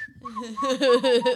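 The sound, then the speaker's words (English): A brief high whistled note gives way to a voice loudly vocalizing the Pirates of the Caribbean theme tune, its sustained notes wobbling in pitch over about a second. “Yeah, that famous Pirates of the Caribbean theme.”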